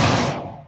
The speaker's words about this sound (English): Ooh. Firework. Firework and a heart attack for me.